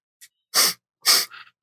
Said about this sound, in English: Somebody doing lines? Really? I'm sniffling.